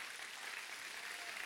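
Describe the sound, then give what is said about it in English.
A church audience claps hands for the Lord before a morning Bible study. It is a dense, continuous patter of many hands, moderately loud and sustained without pause. “If you guys are ready to study the Word of God this morning, give the Lord a hand clap.”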